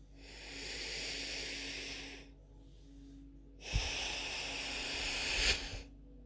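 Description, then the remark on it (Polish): Two long, deep breaths in a guided breathing exercise, breathing out through the nose, with a pause between them, each a broad airy hiss lasting a couple of seconds; the second is louder and ends with a brief nasal snort-like rush. “Zróbmy to jeszcze dwa razy.”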